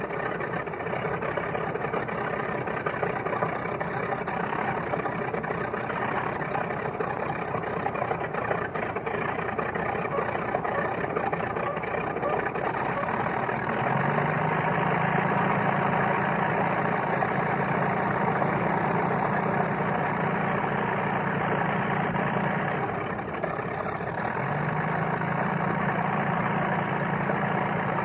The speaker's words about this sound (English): Hear the primer squeaking on the other one? They're trying to get the other one going. There's two planes on the runway. Here, the other one's breaking in.